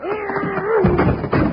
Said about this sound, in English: You're getting real good at smashing down doors, partner.